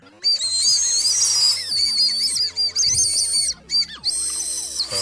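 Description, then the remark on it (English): Shrill toy whistles blown in quick bursts, warbling high tones that slide up and down with short gaps between blasts, loud and without any talking. “Should we do the Dagashi Kashi intro with these whistles?”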